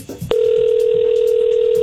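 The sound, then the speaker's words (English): A steady, unbroken electronic telephone tone starts after a brief soft rustle and hums on evenly at one pitch, clear, with no voices. “So yesterday, the bank called Luke.”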